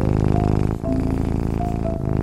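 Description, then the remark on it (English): A cat named Lucy purring in a person's lap, a steady, fairly loud rumbling with a brief dip partway through before the purr carries on. No one speaks. “Lucy jumped into his lap and purred and purred.”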